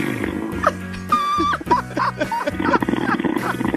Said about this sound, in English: We put another guy to sleep. He's snoring. I'm 2 for 2.